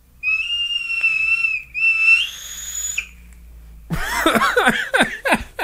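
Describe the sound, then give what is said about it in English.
A loud, steady high-pitched whistle from airflow through a device holds for about three seconds, briefly breaking and rising in pitch, then gives way to bursts of laughter. “Now, the only thing I've noticed so far that's weird is the airflow, it whistles. Do you hear that? That's the loudest it's ever been, and I didn't try to make it that loud.”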